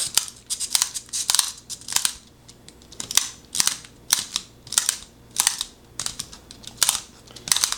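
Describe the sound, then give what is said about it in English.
A pencil being sharpened in a manual sharpener, with a steady rhythm of crisp scraping and grinding bursts repeating about twice a second, with no talking. “So this is definitely making a different type of tip than kind of my electric pencil sharpener that I normally use.”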